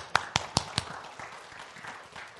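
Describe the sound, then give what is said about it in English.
Four sharp, evenly spaced hand claps ring out in applause for a pastor, then fade into a quiet, slightly murmuring room. “Give it up”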